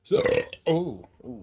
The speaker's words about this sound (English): Oh. Oh, that did not taste good. That came from deep. That did not taste good. This is the first time I've ever tried Modelo. That belch brought up shit from last week.